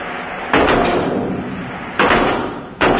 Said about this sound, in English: It takes about one-fifth of a second for the bullet to leave the police officer's gun and tear through the paper target with a man's silhouette.